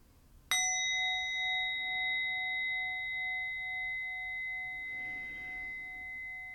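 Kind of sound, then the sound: signal or alarm, meditation bell ringing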